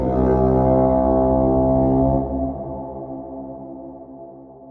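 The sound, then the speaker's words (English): A deep, sustained horn drone with a rich stack of harmonics holds steady and loud for about two seconds, then slowly fades while still sounding. No voices. “And then there's a second low, long drone.”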